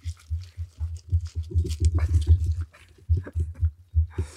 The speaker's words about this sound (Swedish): Nu kommer hunden i full jävla fart. Akta sladdarna.